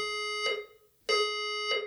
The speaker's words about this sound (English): Yeah, listeners, we just had to take a quick break there because I got evacuated from the Belmont City Library. I don't know if any of those sirens came through. Come through the recording.